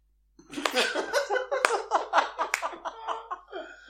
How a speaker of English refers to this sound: You'd be walking through the streets of Blackpool getting like a slow clap with one just going...